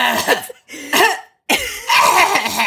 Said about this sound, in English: Oh my God. There's always coughing coming from the audience.